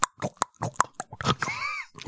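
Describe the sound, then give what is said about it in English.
A voice imitates peg-leg footsteps with a run of sharp, uneven mouth clicks and pops, fairly loud, broken briefly by a squeaky whistling glide before a final thump. “I'm trying my best to do step peg leg noise.”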